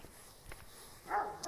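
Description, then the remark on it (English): A dog lets out a single short, high-pitched whimper over a quiet background with faint shuffling. The whine is brief, and no one speaks. “it's okay, pup. Jackson. No pull. It's okay, pup.”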